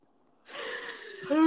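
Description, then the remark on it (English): A person yawns: a long breathy inhale that swells and ends in a brief voiced, groaning tone, heard on its own with no talking. “So sorry, fucking yawning, funny, but I know that was a good one.”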